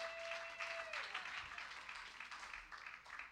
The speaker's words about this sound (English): Give him a hand clap.